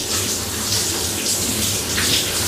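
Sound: shower water running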